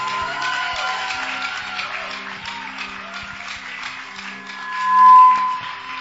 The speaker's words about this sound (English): Keep clapping unto the Lord